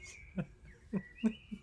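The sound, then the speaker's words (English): Faint songbirds whistle and trill in the distance outdoors, their thin high notes drifting across the moment, while four soft low thumps land irregularly closer by. “No, I think, just spy on my balcony, it's a chaffinch, or it could be a thrush. Perhaps a tit?”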